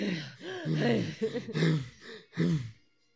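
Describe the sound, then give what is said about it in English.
A voice imitates heavy panting: about five loud, voiced huffing breaths in quick rhythmic succession, each with a rising and falling tone, then a brief quiet. “Why did he pant like that?”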